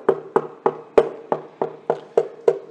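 Nine steady knocks on a wooden door, evenly paced about three per second, each a hollow, resonant thud with no voices.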